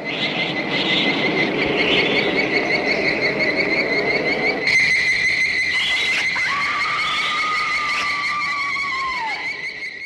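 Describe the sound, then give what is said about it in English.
The giant ant sound effect from the film Them: a loud, shrill, unbroken squealing whine with warbling high overtones, shifting midway and ending in a tone that slides downward, with no voices. “You know, that sound that they use for the ants.”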